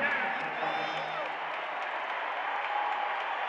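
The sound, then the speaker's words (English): A basketball arena crowd roars steadily during a Utah Jazz–Blazers game, reacting to a turnover with the score 99-97 and 7:25 left: a dense wash of cheering and clapping with a few shrill whoops rising above it, holding at an even, loud level throughout. “Crowds into it.”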